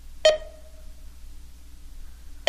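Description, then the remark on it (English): Two sharp electronic beeps, about two seconds apart, each a bright click-like onset followed by a short ringing tone that fades, over a faint low background hum; a sound effect from the TV show Lost that resembles a grocery store beep. “It's going beep, beep, beep.”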